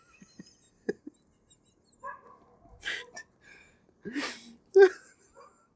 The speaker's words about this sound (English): Oh, it's still up there. I'm about to sneeze again.